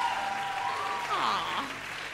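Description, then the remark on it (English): A live audience applauds the guests at a live show, steadily, a dense wash of clapping that fills the whole moment, with cheering voices rising and falling over it. “One more round of applause for our guests”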